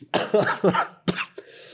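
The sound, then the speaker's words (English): A fit of coughing: three or four harsh, raspy coughs in quick succession, a brief pause, then one more cough and a short throaty rasp trailing off. “Genuine cough.”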